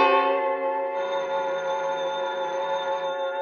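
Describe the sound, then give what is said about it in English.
A telephone bell rings steadily and loudly for several seconds on Miletus's private number, a bright metallic tone with a faint warble, heard alone with no voices. “If Miletus was out of town, everybody who knew his private number would know better than to ring it.”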